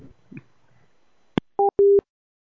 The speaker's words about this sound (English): You picked up the phone really, really quick. Was that, like, the first ring on your end? No, it was, like, the second.